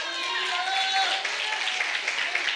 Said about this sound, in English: And if you're struggling, and if you have a hard time, get with one of the people who are clapping their hands.